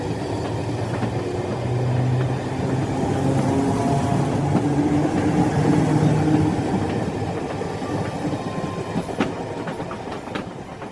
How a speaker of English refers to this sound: Chris and I rode the train for several hours.